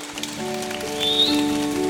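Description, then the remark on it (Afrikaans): An audience claps steadily in a dense, crackling wash of applause, with sustained keyboard chords humming underneath and a brief rising high tone partway through. “'N Goeie hande klap.”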